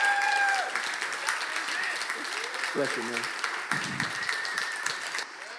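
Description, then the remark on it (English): A crowd applauds steadily with dense, continuous clapping to welcome a speaker, while a man's voice speaks briefly over it and the clapping carries on throughout. “But would you put your hands together and give a warm welcome to”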